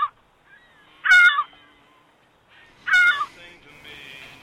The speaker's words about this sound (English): After that, only silence, interrupted by the occasional shriek of gulls, for 4 more hours.